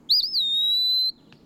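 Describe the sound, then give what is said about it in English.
A single clear, whistled eastern wood pewee song: a brief wavering start that settles into a long, slightly falling note lasting about a second, distinct over quiet background hiss. “As a result, the eastern wood pewee is now a species of high conservation concern.”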